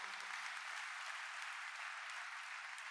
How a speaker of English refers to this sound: Can we put our hands together for this wonderful men and women of God? That clapping is so small.